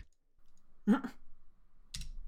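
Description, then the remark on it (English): A few quick clicks of typing on a computer keyboard as a prediction is entered, fairly quiet, coming in two short bursts separated by a brief pause. “Yeah, I'm typing that in.”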